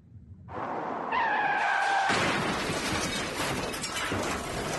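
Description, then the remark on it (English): A car's tires screech in a brief, high squeal, then a loud crash erupts into a sustained roar of crunching metal and scattering debris that fills the rest of the moment. “There is no end it's just to the, like, car crashes.”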